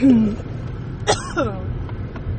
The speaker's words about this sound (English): I'm obviously still have this cough going on.